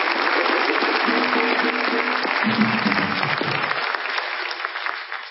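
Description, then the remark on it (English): A crowd claps steadily in a dense, sustained round of applause that holds at full strength for about five seconds before easing slightly at the very end, with faint voices mixed in. The applause is for the Right Honorable Gladstone Christie at a church's 50th anniversary celebration. “So we want to give you a special round of applause again for us.”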